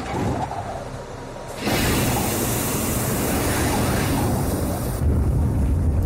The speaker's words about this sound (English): And the jetpack's 8 engines light up for about 40 seconds.